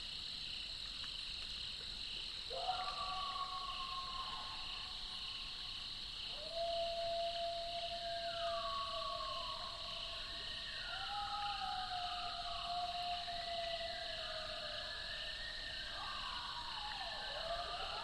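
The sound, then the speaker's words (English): Several coyotes howl in the distance in a swamp under a rising full moon, in wavering, overlapping rising and falling tones, joined one after another, over a steady high chorus of insects on a quiet night. “Coyotes howling in the distance.”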